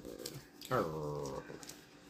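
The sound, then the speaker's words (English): A female dog growls once, a short, tense, rumbling vocalization lasting under a second, moderately loud against a quiet background. “She started growling.”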